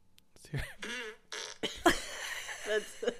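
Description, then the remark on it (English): A person blows a wet, sputtering raspberry with their mouth, imitating a fart in several buzzy bursts that rise and fall over about three seconds, fairly loud. “Is that a real fart? No.”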